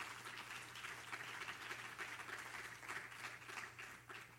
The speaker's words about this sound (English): As he comes, would you clap your hands one more time to Jesus in Jesus' name?